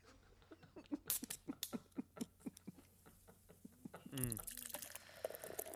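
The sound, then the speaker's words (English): Mayday beer pours into a gold mug with quick glugging, splashing pulses, followed by a brief rising gurgle as the mug fills and a soft fizzing hiss at the end. “Oh yeah, that's what it sounds like when you pour a delicious Mayday beer in a Indeed. Nice gold mug.”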